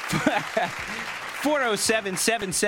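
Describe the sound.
A canned applause sound effect played on a call-in show: dense, steady crowd clapping that runs the whole length, while people talk over it.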